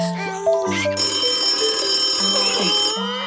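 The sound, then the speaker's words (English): A telephone rings after a number is dialed on a mobile phone: steady electronic tones with bright overtones, fairly loud, filling the short stretch with no one talking. “I'm taking out my phone with my one free hand, and I'm dialing up the stranger.”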